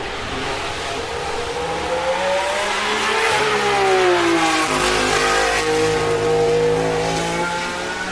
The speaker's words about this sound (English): That was a late 60s, early 70s Ferrari, the 312BB.